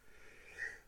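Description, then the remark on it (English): A single quiet, stifled sneeze, a brief nasal snort-like burst of air peaking near the end, with no talking around it. “Sorry, I had to sneeze.”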